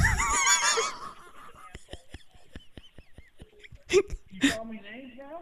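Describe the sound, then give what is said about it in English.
A man presses his backside against a front door and lets out a long, sputtering fart: a steady run of rhythmic pops that ends in two louder bursts, with honking, goose-like vocal noises just before and after. “He just puts his ass up there, farts on the door, and just goes, you're done.”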